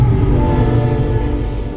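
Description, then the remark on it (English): A heavy train roars by loud, its deep rumble steady throughout, with a sustained horn tone blaring over the noise. “He drove on the train tracks where nobody else is allowed to go. Whoosh.”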